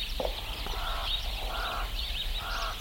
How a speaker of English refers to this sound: Birds greet the day in the small rural town of Newitville.